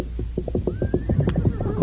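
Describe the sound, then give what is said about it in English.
The Lone Ranger's horse Silver lets out a loud whinny with a rapid quavering pulse that climbs high and then trails off. No one speaks over it. “Here's Silver.”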